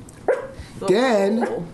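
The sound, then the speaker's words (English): A small female dog, nervous and shaky, lets out a short, sharp yip, then a longer, wavering, whiny bark. The sound is clear and fairly loud. “Then she doesn't like it when I'm sexist to other women. yeah, because she's a female dog.”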